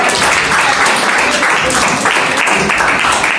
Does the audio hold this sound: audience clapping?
yes